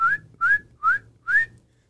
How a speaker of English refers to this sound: This next one, it's one of my favorite frogs. Okay. A little bit high pitched. Kind of reminds me of my tinnitus. Oh, constant ringing in my ears. But it's the northern spring peeper.